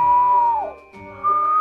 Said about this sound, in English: But she begins whistling, a long, low whistle.